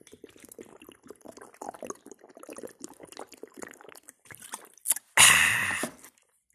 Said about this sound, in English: I'm going to drink the shit out of this water, though, so check it. It'll be almost like I'm drinking.